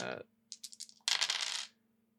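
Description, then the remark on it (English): Three dice are rolled onto a hard table for a culture and etiquette check in a role-playing game: a short run of quick clicking bounces, then a busy rattle as they tumble and settle, with no one talking. “A culture and etiquette. Okay, three dice.”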